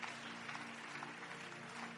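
An audience claps in faith during a sermon, a dense, even patter of many hands at moderate volume, with a faint sustained low tone running underneath and no voices.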